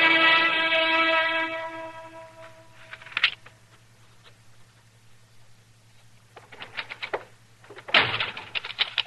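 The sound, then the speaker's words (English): A door slips out of someone's hand and bangs shut with a loud thud near the end, preceded by some rattling and clicking, with a steady low hum throughout and a held tone at the start. “The door just slipped out of my hand. That's all that happened. You nearly broke it off.”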